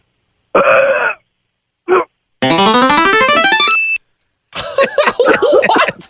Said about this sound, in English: Okay, so he's going in dry to the competition here. Let's hear how loud you can burp